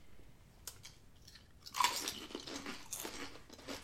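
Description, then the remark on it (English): A sharp, loud bite into a crunchy chili lime kettle chip made with avocado oil and citrus-infused salt, followed by a run of brittle, crackling chewing crunches that fade slightly but continue to the end. No one speaks. “This is our first kettle chip that we've had.”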